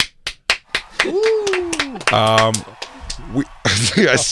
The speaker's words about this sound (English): And for those of you listening to Bonfire and Legion of Skanks, pause for applause.